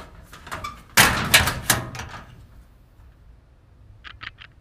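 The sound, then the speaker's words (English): A metal school locker door bangs shut with a loud, rattling clang as someone inside closes it, then after a quiet pause comes a quick series of three sharp latch clicks as it locks. No one speaks. “Okay, so I told her, I'm gonna hop in, close the door, lock it, wait like 5 seconds, and then open it.”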